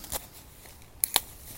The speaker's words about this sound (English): I'm going to pull that umbrella out now.